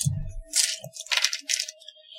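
Dice, including red dice, clatter across a hard surface in a few quick bursts of rattling clicks, fairly crisp, after a soft low thud at the start, with no voices.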